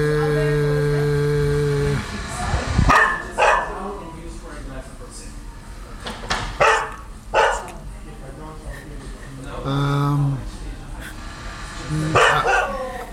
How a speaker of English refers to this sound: I'll say a bull mastiff. actually a husky. Oh, husky. Oh, sounds very like a bull mastiff.